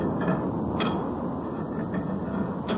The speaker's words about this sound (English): Let me replace this cover so we can talk in a normal tone.